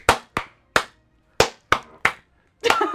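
Hands clap out a rhythm: six sharp, crisp claps in an uneven pattern, then a quick, dense flurry of claps at the end. No one speaks.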